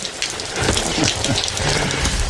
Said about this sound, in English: That running water in the background of that clip. Uh-huh. Makes me have to tinkle.